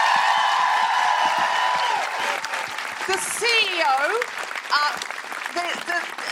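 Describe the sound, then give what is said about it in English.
A crowd applauds co-host Sara Pascoe with steady, dense clapping, joined partway through by loud whoops and shrill cheers. As the clapping fades, a voice starts to speak over the last of it. “Can I have a huge round of applause for my amazing co-pilot, Sara Pascoe?”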